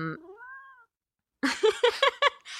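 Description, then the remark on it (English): A cat lets out a thin, drawn-out meow, goes quiet for a moment, then gives a quick string of four or five short, louder meows, with no talking. “Man, your cat be reading.”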